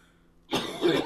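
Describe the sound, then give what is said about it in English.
After a brief quiet moment, someone breaks into harsh, loud coughing that rolls straight into rough throat clearing, filling the rest of the short clip. “You need a cough retarder.”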